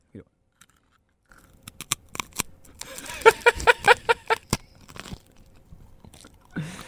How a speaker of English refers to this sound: These crackers are really good. These crackers are so crunchy and tasty.